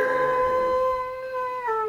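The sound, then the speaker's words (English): A person lets out a long, steady, wolf-like howl, imitating a werewolf. The single loud, sustained cry holds its pitch for nearly two seconds, then dips slightly at the end. “I just got to wait until he howls.”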